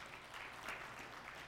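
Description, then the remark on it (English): An audience at Union Grove claps steadily for a player who just scored 1,000 points, in a dense, sustained patter of many hands, moderately loud and even throughout, with no voices standing out. “We can clap it up for him.”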